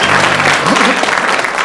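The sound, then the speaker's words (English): Loud, steady applause from an audience, a dense wash of many hands clapping at once, with a brief murmur of voices rising underneath partway through. “I shall be judging this round, teams, by the volume of applause and volume and length of applause from the audience.”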